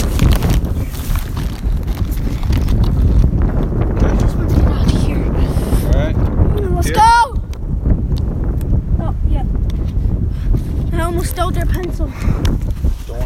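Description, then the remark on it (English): Strong, cold wind rumbles and buffets the microphone throughout, a loud, steady low roar with gusty fluctuations, joined by a few brief high-pitched chirps or squeaks partway through. “It's cold and windy in here.”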